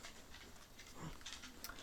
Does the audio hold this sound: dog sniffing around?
yes